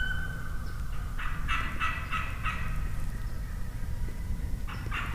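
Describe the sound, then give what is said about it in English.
A wild turkey gobbler gobbles in a rapid, rattling burst, calling to a hen, followed by a second shorter gobble near the end, over a steady low outdoor rumble. “John's calling to another hen.”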